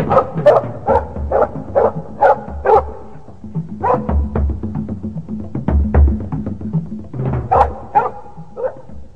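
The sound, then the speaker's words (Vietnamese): Several dogs of a guerrilla band bark repeatedly and excitedly past midnight after catching a person's scent, a fast run of sharp woofs at first, then scattered barks and yips, fairly loud with no one talking. “Quá nửa đêm, chó của toán du kích đánh hơi được tôi, làm tôi phải chạy thoát thân.”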